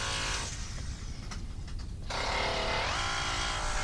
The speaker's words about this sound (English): It's pretty fun. So that's fast drilling.